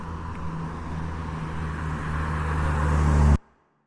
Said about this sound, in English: Well, geez, now I'm coming in a whole conflagration of cars. Maybe the Les Schwab's like the hangout nexus point.